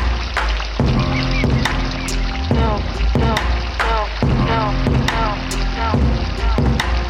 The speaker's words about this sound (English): What do you hear? I hear the water. I hear the birds.